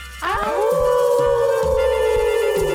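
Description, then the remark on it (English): Several people howl together like dogs at the moon, a sustained wavering chorus that rises sharply then holds steady for a couple of seconds, loud, with a low rumbling underneath. “I guess it's time to howl at the moon dog, with even without Mason”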